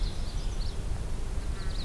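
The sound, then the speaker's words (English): A nuthatch gives a few short, nasal calls, faint, over a steady background of low outdoor rumble and noise. No one speaks. “There's a nuthatch again.”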